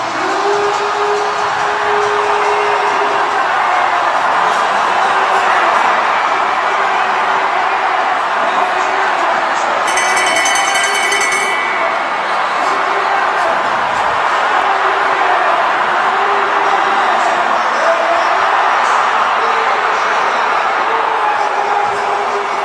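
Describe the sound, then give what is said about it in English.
A large crowd cheers and roars loudly and without a break, with a dense wash of mixed voices, as Charles Hamlin of Canada crosses the finish line to win Olympic gold in the men's 500 meters short track. A brief, piercing whistle-like burst cuts through midway. “also cheering.”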